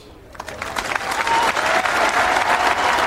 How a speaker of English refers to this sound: Just a closing four for Tiger Woods, 78 and 75, but that is not going to stop the rapturous applause. That went for a good minute and a half.